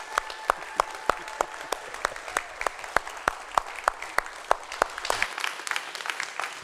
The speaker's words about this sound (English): Give it some width. Let them really sense, hey, I am grateful and thankful for what you brought to me. And man, at the same time, you're welcoming the person coming in. And I want you to clap till it's pretty much right. Yeah, okay.